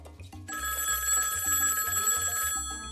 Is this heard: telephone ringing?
yes